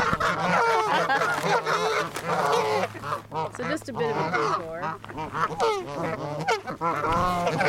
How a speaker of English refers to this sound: And we are currently surrounded by geese in front of a huge pond. I'm going to try to snap some pictures. Or I'm going to do video right now because this is loud.